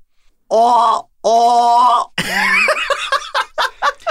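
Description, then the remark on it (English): A trapped deer cries out in distress: two long, strained bleats, then a ragged, harsher call breaking into a rapid run of short, sharp yelps. Loud throughout, with no talking. “Hal, we caught one. Yeah. It sounds like a deer.”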